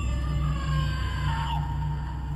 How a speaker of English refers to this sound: You open the door and step onto a plastic mat, and you hear it, that same scream that has been greeting you since the early 1990s.